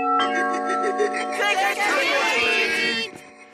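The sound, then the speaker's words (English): A doorbell rings with a sustained, multi-toned electronic chime lasting about three seconds, while a burst of lively chattering voices rises over it midway before it cuts off. The bell marks trick-or-treaters coming up to the door wanting candy. “You got kids coming up all hours of the night, knocking on your door, ringing your doorbell, wanting some candy”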